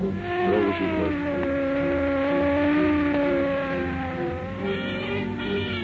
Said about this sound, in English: While traffic at one of Los Angeles' busiest intersections is jammed with a morbidly curious mob, car 11 screams through downtown streets.